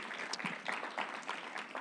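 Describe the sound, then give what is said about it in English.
A church audience claps their hands together in a dense, steady patter of many overlapping claps, a lively round of applause lasting a couple of seconds with no voices heard. “Hey, give yourselves a hand clap for waking up this morning and making it to church.”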